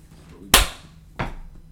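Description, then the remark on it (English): Two sharp hand claps, the first loud and crisp, the second slightly softer about two-thirds of a second later, each snapping off quickly against a quiet background with no talking. “That was a clap.”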